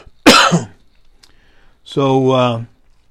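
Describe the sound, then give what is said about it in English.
A single sharp cough, then a short pause and a longer voiced throat-clearing sound, both loud with no talking. “Talking is a problem for me in my cough.”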